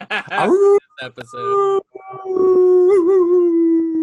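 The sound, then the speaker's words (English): A man's voice imitates a long, wavering werewolf howl, drawn out for a couple of seconds after a brief burst of laughter and playful vocal noises, loud. “Oh, you should have did a howl instead.”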